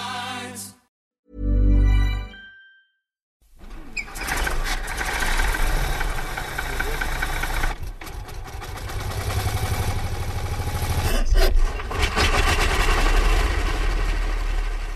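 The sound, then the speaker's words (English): A brief harmonic tone sounds, then after a pause an old car engine rumbles to life and keeps running, a steady, loud, rough idle with a knocking texture and slight surges. It is a vintage car of an Irish Veteran and Vintage Car Club member, on the morning of July 13, before the first Gordon Bennett commemoration rally. “Port Leisure, the morning of July the 13th, as members of the Irish Veteran and Vintage Car Club prepare for the first Gordon Bennett commemoration rally, which is about to begin.”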